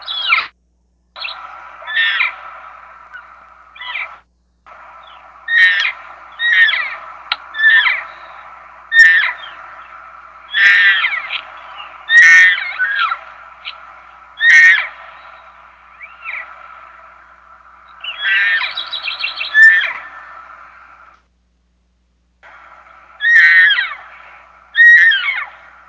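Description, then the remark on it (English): A cow looking for her calf gives a lost mew call, repeated over a dozen times: high, long drawn-out squealing notes, very short on the low note, with brief pauses between them, fairly loud, with no talking. “I mean, you got a basic lost mew characteristic there: high, long drawn out high note, very short on the low note, just looking for a response”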